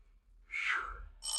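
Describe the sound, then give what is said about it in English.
A doorbell sounds: a bright, wavering chime tone swells and fades, then a second sharp, ringing tone with a steady metallic shimmer starts and holds to the end. No voices. “Oop, darn doorbell.”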